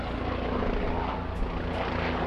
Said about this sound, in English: As I prepare this show, police helicopters are droning above where I live. Can you hear them?